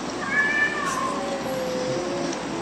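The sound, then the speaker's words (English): A cat meows at a magpie that is harassing the cats, a drawn-out, wavering cry that rises and then slides downward, fairly loud over a steady background hiss, with no one talking. “This is that bird fucking with the cats.”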